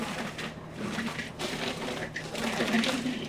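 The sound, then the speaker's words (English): A blender runs steadily for a few seconds, its motor whirring and grinding loudly as a thick sherbet mix of mango, vanilla Greek yogurt and a little water churns, with no talking over it. “We're going to add 1 cup of vanilla Greek yogurt. And then a little bit of water. Okay, we'll blend this up.”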